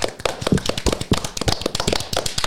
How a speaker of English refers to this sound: Bro really clapped for himself.